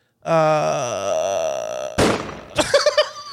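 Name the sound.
gunshot sound effect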